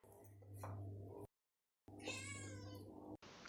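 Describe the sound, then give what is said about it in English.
A cat named Alice meows twice, fairly loud, with a brief silent gap between the calls; the second meow is drawn out and strained, over a low steady hum. “Oh, you're taking your Meow Maths GCSEs.”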